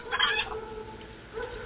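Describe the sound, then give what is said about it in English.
A chicken in Norristown clucks in a short, slightly squawky burst, then gives one softer cluck after a brief pause. The sound is moderately faint with a muffled, low-fidelity quality and no talking. “Where dogs, cats, and other chickens fear to tread. The Norristown chicken bitch.”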